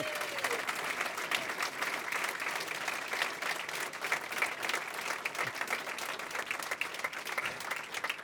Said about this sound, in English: Ladies and gentlemen, round of applause for John Howard.